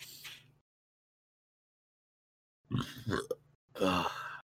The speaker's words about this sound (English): That was a nice burp. I really felt that burp.